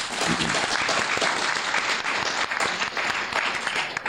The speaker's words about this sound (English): Huge round of applause. Thank you.